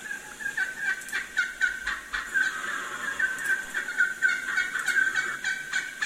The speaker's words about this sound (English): Just kind of listening to probably my favorite subject for sure, and that's turkeys.